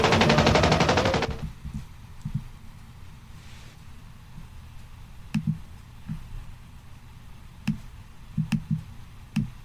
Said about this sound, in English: I'm shooting the AK-47 automatic rifle